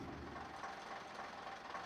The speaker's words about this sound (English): Grandma pushes the bus stop button. The bus stops.